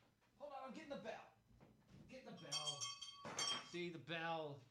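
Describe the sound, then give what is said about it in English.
A small bell clinks as it is handled, then rings out with bright, sustained metallic tones for about a second, while a person talks before and after. “But I've got to get the bell.”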